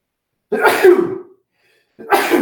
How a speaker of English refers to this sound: Sorry, I got to sneeze.